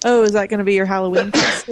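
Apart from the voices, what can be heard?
sneeze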